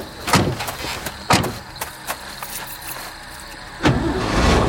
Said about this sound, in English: shut the back door.